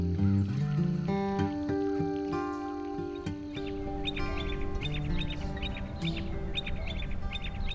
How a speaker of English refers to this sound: As I enter Fort McHenry National Monument and Shrine in Baltimore, I'm greeted by a choir of singing birds.